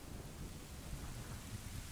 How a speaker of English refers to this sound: Oh, so it kind of pans up. There's thunder and lightning above us.